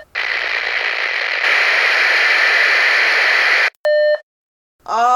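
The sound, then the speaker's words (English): Loud, steady radio static hisses for several seconds, then cuts out for a short electronic tone and a moment of silence before a burst of warbling interference returns. “After that first night, they were all just noise and interference.”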